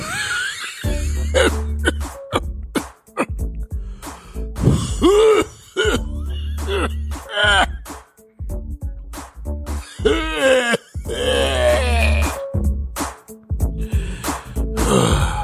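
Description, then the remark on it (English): A man with the flu repeatedly clears his throat and coughs in harsh bursts, with groaning, effortful vocal noises between them over about fifteen seconds and a low background hum. “Yo, I just got this back cough, man.”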